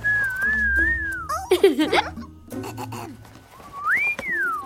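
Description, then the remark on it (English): A high, steady whistle, made by blowing into a small jewel, wavers gently for over a second, gives way to squeaky, chattering vocal sounds, then returns as a short rising-and-falling whistle tone near the end. “I'm going to blow into it and make it whistle.”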